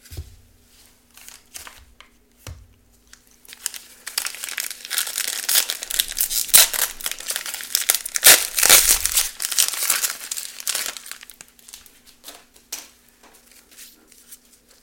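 Crinkling and tearing of foil 2023 Donruss UFC trading card pack wrappers, a sustained bright rustle for several seconds with brief taps and handling sounds before and after, no voices.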